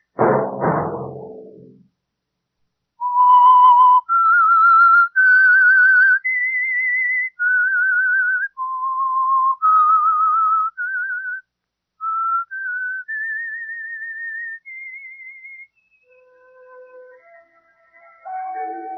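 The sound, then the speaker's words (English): A lone whistler carries a slow, haunting melody of sustained, wavering notes that step up and down, clear, after a brief rumbling burst at the start and no talking; it is the theme whistle signalling a radio program sponsored by an oil company. “Let that whistle be your signal for the Signal Oil program, The Whistler, each Monday at 9.”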